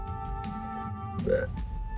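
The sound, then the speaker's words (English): A single short, croaky burp from a homunculus, gurgling and mid-pitched, rises briefly over a steady low hum and quickly fades, with no talking. “Does the homunculus also burp?”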